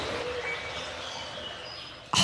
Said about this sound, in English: That was Laura Gardner and her blue-crowned laughing thrushes